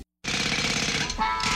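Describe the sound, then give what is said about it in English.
A loud jackhammer pounds away in a rapid, steady rattle, starting abruptly after a brief moment of silence and continuing without pause. “Jackhammers, saws, pliers.”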